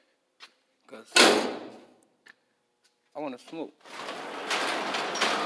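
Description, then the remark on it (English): A large garage door at a workplace opens with a loud, sustained rattling roar that builds and carries on to the end, preceded by an earlier clattering burst and brief talk. “And I'm about to open this big-ass garage door, so you're going to hear some noise.”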